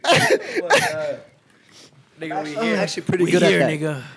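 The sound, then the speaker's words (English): A person imitates a goat's bleat, loud, in two wavering, nasal bursts separated by a short pause. The second call is longer and quivers. “I'm actually pretty good at it. That's not a goat.”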